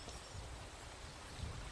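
A soft, steady rush of water from a gentle stream forms a quiet, continuous hiss with faint low rumbles and no voices.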